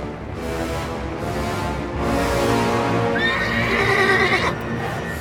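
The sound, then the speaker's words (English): A white horse being ridden off lets out a loud, wavering whinny over a steady background of clattering hoofbeats, the neigh rising and trailing off near the end. No one speaks. “After the Antarctica campaign, when he rode off on his white horse.”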